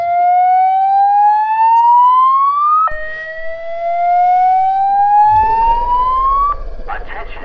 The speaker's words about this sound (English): Yeah, I'm so sorry, guys. Can we pause? My fucking building's having a fucking fire drill. Yeah, it's just a fire drill.